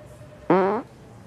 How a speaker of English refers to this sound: I am sorry. Damn it. I have a condition. I fart when I'm scared.